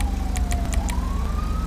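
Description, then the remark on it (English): A police car siren wails on a steady, slowly rising tone over a low engine rumble, with a few quick clicks near the start and no one talking. “Just don't have your siren on, because then he'll know where we are.”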